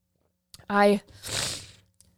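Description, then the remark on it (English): A short voiced murmur followed by a single breathy, noisy sniffle lasting about half a second, with small clicks at the start and end. “Sorry that I'm like sniffling.”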